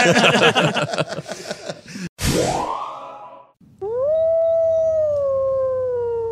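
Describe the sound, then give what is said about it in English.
A coyote yips and chatters rapidly, then lets out a rising wail that settles into a long, steady howl, loud with no one talking. “Is that a coyote? I believe so.”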